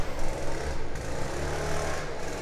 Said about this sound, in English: Is that a leaf blower? What is it? It's probably a leaf blower, yeah.